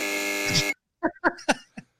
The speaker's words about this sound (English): Oh, come on. The BS buzzer for my friend there.